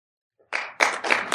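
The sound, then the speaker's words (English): Audience applause at a film discussion breaks out suddenly after the filmmaker explains releasing the movie without spending marketing dollars, and carries on loudly, swelling in a couple of surging waves of many hands clapping at once, with no talking over it. “I wasn't like, that's it. Applaud for me.”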